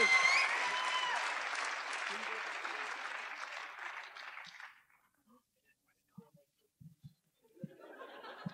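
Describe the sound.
An audience breaks into steady, dense applause that carries on for several seconds, then dies away into near silence with a few scattered clicks and faint murmuring voices.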